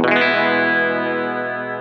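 A single electric guitar chord rings out through a reverb effect, sustaining loudly and fading only slightly over two seconds, with a slightly gritty, shimmering tone and no voices.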